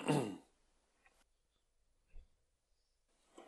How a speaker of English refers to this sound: Yeah, I'll try and keep that coughing to a minimum. Well, I'll cut it out anyway